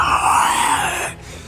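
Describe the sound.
A creature swoops up and gives a loud, harsh wailing scream, a single sustained shriek with a rough, groaning edge that holds for about a second before abruptly cutting off.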